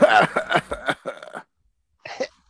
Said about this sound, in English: cough. I know. Cough. All right. Sounded the same twice.